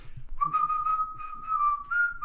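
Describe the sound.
A person whistles a bouncy melody from a Disney song, a steady clear tone gliding between a few notes with short breaks, fairly loud and alone without talking.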